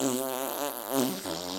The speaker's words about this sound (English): Oh, it wasn't me. Oh, well, maybe it was. I'm still farting. Oh, I can't stop.